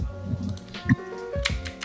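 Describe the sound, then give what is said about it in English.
A few scattered computer keyboard key clicks, fairly soft, tapping irregularly over a low steady background hum. “I keep clicking random things on my keyboard and I need to stop.”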